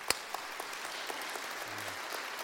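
A crowd applauds steadily, a dense wash of overlapping hand claps with a few sharper individual claps standing out, sustained at an even level throughout.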